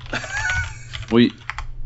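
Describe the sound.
Quick clacking keystrokes from a computer keyboard, a short burst of typing while looking up the rules of handball, with muffled voices murmuring underneath.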